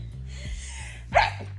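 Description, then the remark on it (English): A single short, sharp sneeze bursts out, brief and somewhat stifled, over a steady low background hum. “You keep sneezing like that.”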